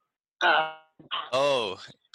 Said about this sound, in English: Oh, …. Oh, he's coughing. That's not good.